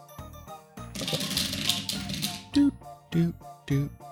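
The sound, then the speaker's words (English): A deck of playing cards is riffled in one quick burst of crisp fluttering clicks lasting about a second, followed by short spoken voices. “Yes, it's time for that good, a shuffle.”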